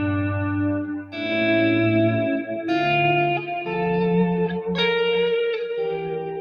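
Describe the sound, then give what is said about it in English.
Electric guitar chords and sustained notes ring out alone through a dual stereo echo effect producing two sounds, washed in a wide, spacious echo whose repeats trail behind each change. The tone is rich, slightly driven and loud throughout. “For me, it's the ultimate echo. It's a dual echo, it's two sounds.”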